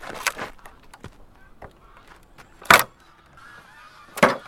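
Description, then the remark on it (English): Wooden pallet boards being prised apart with a tool to start denailing them, with three sharp loud cracks spread over a few seconds and squeaky, honk-like creaks of straining wood and nails in between. No one speaks. “I'm using a tool to get the pallets apart so I can start denailing them.”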